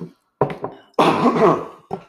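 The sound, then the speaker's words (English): A loud cough sequence from a person whose voice is going weird: a couple of short hacking bursts followed by a longer, rough throat-clearing cough, then a brief final catch, with no talking. “And I'm going to cough because my voice is going weird.”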